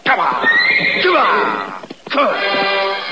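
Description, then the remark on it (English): A horse that smells a cat and refuses to enter a canyon whinnies loudly in two shrill, wavering bursts, the first longer and rising before breaking off, the second following after a brief pause with a quavering, descending tone. “The horses smell the cat. They won't go in that canyon.”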